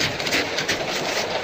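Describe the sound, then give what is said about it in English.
A freight train rumbles past on the tracks across farmland, a steady, loud rush of noise with faint rhythmic clatter from the wheels, with no voices. “Suddenly, the dark silhouette of a man hurtles from the train, dropping hard into the sharp cinders of the railroad bed.”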